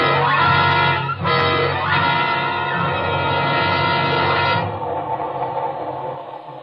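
A loud passenger train runs on rails with a roaring, steady rumble and sustained, whistle-like tones layered on top, fading slightly toward the end. No one speaks.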